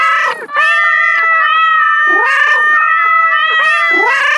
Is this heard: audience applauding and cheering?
no